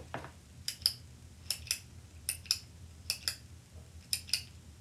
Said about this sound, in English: That sounds like somebody clicking a pen. That is right. Yes. Pen clicking.